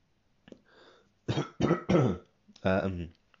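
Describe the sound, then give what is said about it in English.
A person with a cold clears their throat and coughs several times in a rough burst of short, loud, hacking bursts with brief pauses between them, mucus clogging the throat. “I've got a terrible cough, and that cough, there's like mungus, like snot inside the mouth, and that's just clogging me up.”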